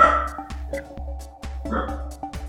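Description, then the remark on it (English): A dog named Mulder barks several times in quick, uneven bursts, moderately loud, over a steady low hum in the background. “Hold for barks. Barks.”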